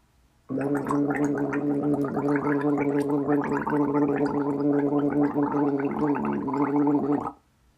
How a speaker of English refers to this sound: So bear with me. The vibration of the gargle, just that gargle, is just in your throat.